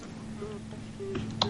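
A few quiet keyboard clicks tap out near the end, over a steady low electrical hum with no one speaking.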